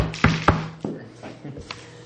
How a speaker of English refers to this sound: You know, so you go up the door, I assume you knock and introduce yourself, or, you know.